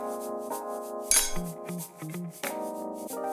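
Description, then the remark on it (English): A single bright clink of glasses touching rings out briefly near the start, set against steady tonal music that continues underneath. No talking. “Well, cheers, my friend. You as well. Cheers.”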